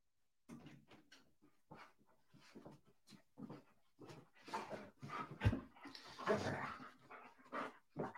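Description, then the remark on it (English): A dog whimpers and pants, with a run of short, breathy, uneven whines and huffs that rise and fall over several seconds, plus a louder yelp-like burst midway. “Dogs like Rojo, too. Dogs like Rojo.”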